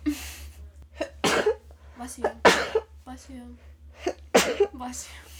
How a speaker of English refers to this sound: Oh, hold on, I have to sneeze.